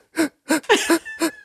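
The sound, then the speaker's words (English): A voice imitates labored, wheezing breathing: four or five raspy, strained gasps in a steady rhythm, fairly loud, with no words spoken. “As you get closer to him, you can hear his breathing is extremely labored as he holds the plunger in his hand going”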